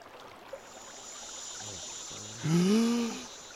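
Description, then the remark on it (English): A steady, gentle rush of flowing stream water runs throughout at moderate volume, joined near the end by a brief, louder tonal whine that rises and then fades. “I don't know why I don't have a better water sound than that.”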